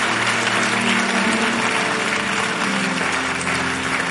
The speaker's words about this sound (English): As you are clapping, something is happening to you right now.